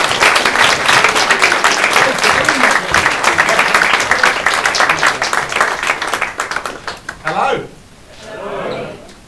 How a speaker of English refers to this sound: Give him an applause.